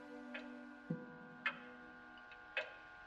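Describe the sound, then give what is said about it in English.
A hall clock ticks slowly and steadily in the silence of the night, its sharp clicks alternating between louder and softer beats, set against a faint sustained hum. “In the still silence of the night, she could just hear the hall clock striking two.”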